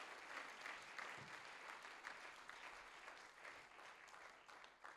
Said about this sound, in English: Let's give a Lord a clap.